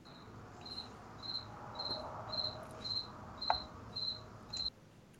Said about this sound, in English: And the cricket is dead. No. No, the cricket is still alive.